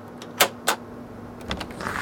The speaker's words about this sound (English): Still no answer. You pull out your key card, put it in the lock.